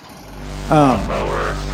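A small lawnmower engine, a clip taken from YouTube, catches and starts up, its pitch briefly rising and wavering before settling into a steady, rough idle over a constant low rumble.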